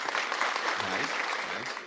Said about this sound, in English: But I mean, there are some good ones. They got cheering. That one's good. They got clapping.